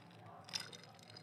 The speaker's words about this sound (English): Oh, listen to that ice.